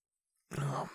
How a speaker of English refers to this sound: this is a yawn.